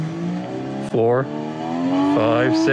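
The engine noise of a classic Porsche 935 Le Mans race car, played from a toy with an accelerator pedal and an original rev counter, screams loudly, its pitch climbing steadily from 3,000 RPM, dropping sharply with each gear change, then climbing again through successive shifts.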